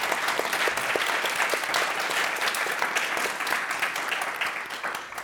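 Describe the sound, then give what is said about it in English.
An audience claps for the panelists of a panel discussion, steadily for about five seconds, a dense, even wash of many hands that holds loud throughout and tapers slightly at the end. “I mean, I think it's early, but please, a round of applause for our amazing panelists.”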